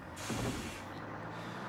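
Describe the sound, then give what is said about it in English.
A bus air brake lets out a sudden loud hiss that stays steady, with a low engine rumble underneath and no voices. “Get him on the bus.”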